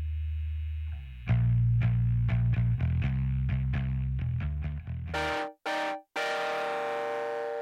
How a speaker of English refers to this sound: This is the dry keyboard sound, and for this I used a lot of distortion going in, so I just tracked with it, and it just plays the same chord that the guitars are playing.